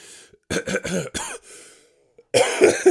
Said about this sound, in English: tickly cough back there. Yeah, but I've been fucking ill the past week or so. Just proper felt like I couldn't talk, just sleeping all the time, and just felt really run down.